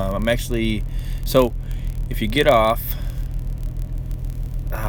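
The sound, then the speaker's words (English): A steady low traffic rumble fills the background throughout, like idling and passing vehicles at a non-typical truck stop in Lexington, Kentucky, while a man talks over it in the foreground. “I'm in Lexington, Kentucky, at a non-typical truck stop.”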